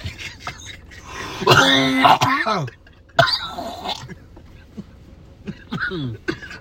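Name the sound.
coughing and throat clearing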